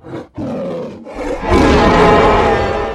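A giant adult dragon with moldy black and green scales roars at a village: a couple of short guttural growls, then a loud, rasping roar that swells and holds for over a second. No voices.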